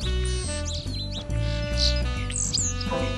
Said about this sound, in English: Today is the British Invasion, where we're going to listen to two of our most common birds, the house sparrow and the European starling.